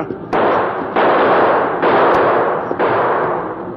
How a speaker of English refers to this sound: If them not turn, we not have chance. Keep shooting, Tonto.